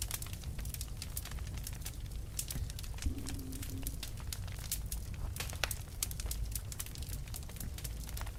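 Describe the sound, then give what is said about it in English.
A fire crackles steadily, with irregular sharp pops and snaps scattered over a low, constant rumble, and a faint brief hum partway through. No one speaks. “Fire crackling.”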